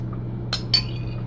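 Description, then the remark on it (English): Two quick metallic clinks of a spoon against a container as someone eats yogurt, the second brighter with a short ringing tail, over a low steady hum with no talking. “And I'm about to eat a little bit of it.”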